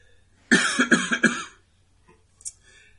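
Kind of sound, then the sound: human body sound, a cough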